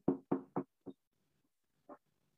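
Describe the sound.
Three quick knocks in a row, then two slower, spaced knocks, like knuckles rapping on a wooden door. The sound is produced live as a sound effect, with no talking.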